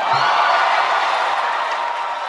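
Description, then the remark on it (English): A large crowd at a speech cheers loudly and steadily, a dense roar of many voices with scattered whoops, holding at full volume without a break. “The crowd is cheering.”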